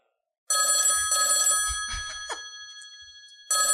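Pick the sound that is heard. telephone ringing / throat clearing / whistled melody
telephone ringing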